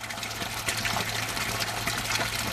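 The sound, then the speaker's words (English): Drinking water gushes steadily into a large tank at Kibbutz Negva in the desert, a continuous rushing pour with a low droning hum beneath it, even in loudness throughout, with no voices. “And every few days, they would make a trip to Kibbutz Negva, which is about 20 kilometers away, and fill up large tanks of drinking water, which would support them until the next time they went and filled up again.”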